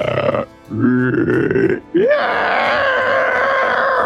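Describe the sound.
A person vocally imitates a dying creature, fallen to its knees and close to death, heaving big, heavy breaths: a couple of short, strained groans, then a long, loud, raspy exhale, with no speech.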